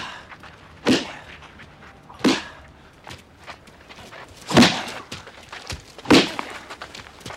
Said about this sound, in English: Finally, Julius gets tired, and in one clean stroke, Jason punches his head off, which bounces off an awning into a dumpster, which then slams shut.